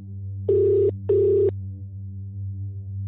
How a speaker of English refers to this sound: And we are going to start with a phone call to Mogadishu.